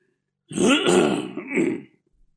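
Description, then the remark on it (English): A single loud throat clearing, a rough guttural rasp lasting about a second and a half, rising then trailing off with a second push before falling silent. “Yeah, clear your throat first.”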